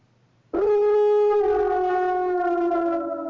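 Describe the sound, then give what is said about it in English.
A werewolf howl sound effect, used as the correct-answer sound cue in a Halloween-themed quiz game: one long, loud, wailing harmonic tone that starts abruptly, dips slightly in pitch, and holds steady for about three seconds with no talking. “That is a werewolf.”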